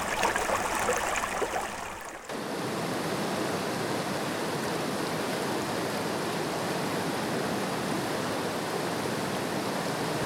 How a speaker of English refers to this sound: It's beautiful down here. There's the peaceful, calm sound of rushing water.